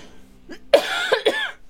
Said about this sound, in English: Yeah, so Haguro Station in Aichi is actually a meteorological station. Sorry, I just need to cough.